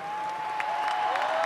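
A large crowd at Donald Trump's rally in Pensacola, Florida cheers and applauds as he mentions Roy Moore, a dense, steady roar with scattered claps and whoops poking through and a thin sustained whistle riding over the noise.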